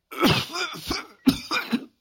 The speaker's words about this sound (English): She was caught up in a fit of coughing and could not speak for some time.